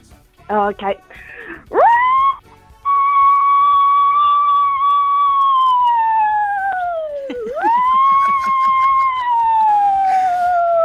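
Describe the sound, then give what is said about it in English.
A person vocally mimics a wailing emergency siren, sustaining long rising and falling tones, with a brief dip and swoop before the wail resumes for several seconds. “your sound effect is a siren.”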